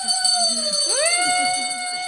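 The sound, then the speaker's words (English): A bell is rung for a founder, ringing steadily with a bright, sustained metallic tone, its pitch wavering briefly midway as it swings. Faint murmuring voices sit underneath. “we'll hand the bell to Father Ketter, and he gets to ring it for that founder”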